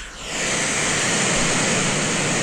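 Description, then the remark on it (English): Steady brown noise plays through a speaker, fading in quickly and then holding as a constant, even rush like surf, with no voices or other sounds. “Here's brown noise.”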